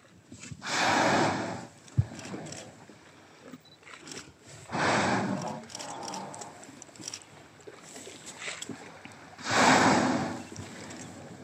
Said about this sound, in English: So those are some of the sounds of whales as they are breathing.